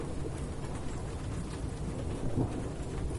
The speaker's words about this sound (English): Wow. Nothing like day thunder. With the sun completely out, see. I like a sunny rainstorm.